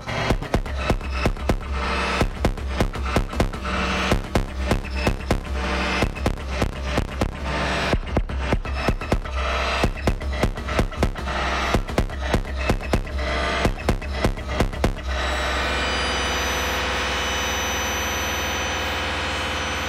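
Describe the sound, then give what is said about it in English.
A modular synthesizer patch with no external sources, more noise or drone than rhythmic, pounds out rapid, dense bursts of gritty noise for about fifteen seconds, then settles into a steady, buzzing drone with a continuous low rumble and no voices; a Rampage channel triggers the bassimilus and the numeric repetitor at audio rate. “But the second patch that we'll be listening to after this is over is much more noise or drone than rhythmic.”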